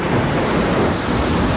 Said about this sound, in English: Oh, wait. Uh-oh. I do have thunder and lightning and rain. Yeah. Give it a second.